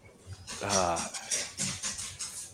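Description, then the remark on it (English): A puppy makes a few high, whiny yelping noises, with a longer drawn-out whine early on followed by shorter bursts, fairly loud. “Hey, puppy.”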